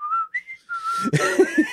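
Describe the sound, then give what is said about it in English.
A man whistles a short tune of a few clear notes stepping between pitches, fairly loud, then a burst of noisy rumbling sound with low thumps as the last whistled note fades. “So he just whistles it.”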